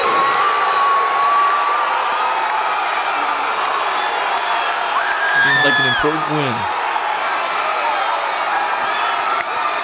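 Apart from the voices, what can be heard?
crowd cheering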